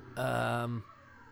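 A single drawn-out, cat-like yowl, held at a steady, rich-toned pitch for about half a second before it slides down and cuts off, with quiet afterward.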